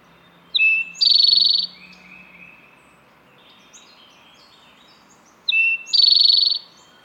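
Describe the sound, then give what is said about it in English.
An Eastern Towhee sings twice, each phrase opening with sharp introductory notes and ending in a loud, buzzy trill, with a quieter bird chattering faintly in between. “To demonstrate this, take a listen to this Eastern Towhee song that has a lot of flair on the T portion.”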